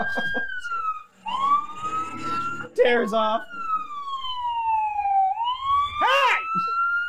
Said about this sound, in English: It's the siren on full blast.